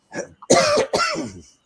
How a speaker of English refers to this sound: I apologize for the cough, but. It's okay. Got a little bit of a respiratory thing going on right now.